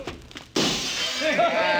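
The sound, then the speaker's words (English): A short murmur of voices gives way to a sudden, loud crash as an empty glass bottle is thrown through a building's window, with bright shards ringing and clattering on for over a second after the impact. “I can heave one right through that window.”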